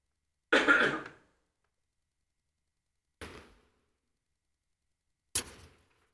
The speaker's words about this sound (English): Excuse me, I'm going to do a cough here for a minute, so I'll turn off the